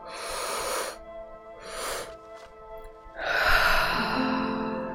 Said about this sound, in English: And big inhale. And that exhale, you should feel your shoulders relax. Big inhale. And big inhale.